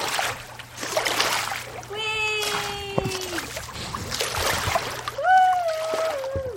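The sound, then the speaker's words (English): Loud, irregular water splashing and sloshing in bursts as someone plays in a toilet, with a high voice singing sustained, wavering notes over it twice. “There's no way she's still playing in the toilet.”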